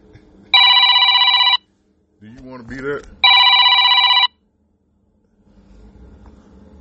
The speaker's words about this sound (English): Oh, shoot. I left my phone on.